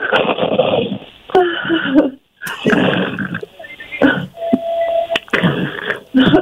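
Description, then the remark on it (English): A caller to a radio show imitates snoring with a series of rough, raspy snorts and breathy bursts separated by short pauses, loud and somewhat muffled, with a brief hum partway through. “let's hear your best snoring impression.”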